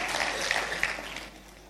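A crowd bursts into dense, steady applause as a clap for God, many hands clapping at once, fairly loud at first and tapering off toward the end.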